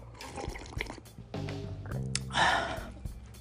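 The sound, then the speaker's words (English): Tea is poured into a cup, a steady trickle whose tone rises as the cup fills, followed by a brief louder splash and a few light clinks and shuffles. “Let me get a little bit more of this tea.”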